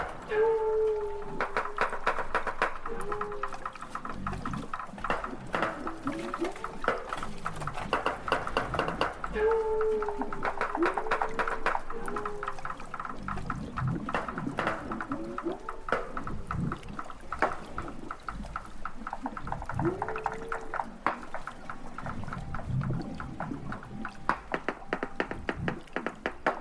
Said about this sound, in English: Researcher Les Gilbert recorded this group of walruses off the coast of Alaska. Walruses have air sacs under their throats, which allow them to float in the water as they sleep and let them produce these underwater sounds.